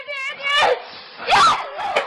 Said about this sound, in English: You know what would cheer us up right now? What's that? Porn noise. There we go. Beautiful.